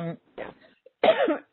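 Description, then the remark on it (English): A person coughs a few times: a short throaty rasp, a brief pause, then a louder, harsher hacking cough with a rough, gravelly edge. “excuse me. That's a lousy cough.”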